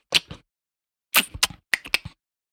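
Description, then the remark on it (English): Sharp, dry clicks like crab pincers snapping together, arriving in three quick bursts of two to four clicks with short silences between, fairly loud, with no voices. “It sounded to Terry like crab pincers clicking together, which was ridiculous considering where they were and how big the crab would have to be.”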